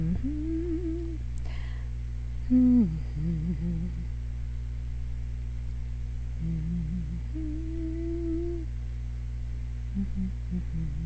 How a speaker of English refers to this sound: Do, do, do, so you can listen to me hum for a minute longer.